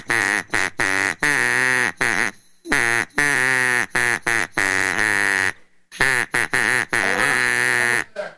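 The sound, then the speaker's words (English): A mallard duck call made by Acme Duck Call, a company from England, is blown, producing loud, raspy quacks in three quick rhythmic runs separated by brief pauses, with no talking. “And that is my duck call.”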